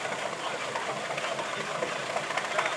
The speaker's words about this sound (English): There you go, you can hear it. Listen, they just fired up the engines.